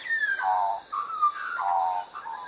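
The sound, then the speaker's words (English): An Australian magpie sings a clear, fluting warble of gliding, flute-like notes that rise and fall without a break, fairly loud, with no voices over it. “Why do magpies sing?”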